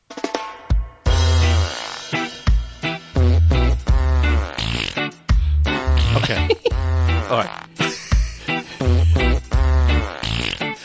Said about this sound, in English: Play …. Now playing. …. Reggae farts.